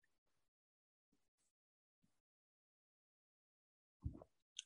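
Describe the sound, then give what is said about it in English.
A few faint sipping sounds, with soft mouth noises and a short, fuller gulp and breathy exhale near the end, as someone drinks a cold beer. “Taking a sip of the cold Rockies.”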